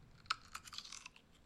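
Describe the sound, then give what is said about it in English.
A crisp bite into a knobby Mount Olive pickle followed by several wet, crunchy chews in quick irregular succession, bright and crackly, with no talking. “Honestly, that is a crispy pickle.”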